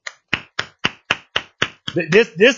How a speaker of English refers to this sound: You guys give them a round of applause, for real. I'm dead serious.